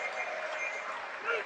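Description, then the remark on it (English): A church audience clapping their hands in a steady, continuous patter, with voices murmuring underneath and a brief louder swell near the end. “You are clapping as if you are a white man.”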